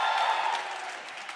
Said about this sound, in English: Come on, clap like joy comes in the morning.